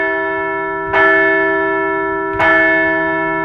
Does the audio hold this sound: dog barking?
no